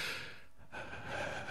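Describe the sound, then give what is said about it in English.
A person imitates heavy, raspy breathing down a phone: one long, noisy breath, a brief pause, then another drawn-out huff, with no talking. “But a lot of kids don't know this, but before the days of mobile phones, people used to ring your landline and breathe down the phone heavily.”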